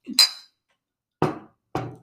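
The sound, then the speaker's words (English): A bright ringing clink of glasses of light IPA beer raised in a toast, followed a second later by two solid thuds of the glasses being banged down on a table, fairly loud with no talking. “Bang on the table is probably not gonna”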